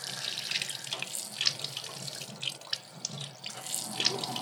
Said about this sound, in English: We're standing in front of the spring of water that has been here for ages.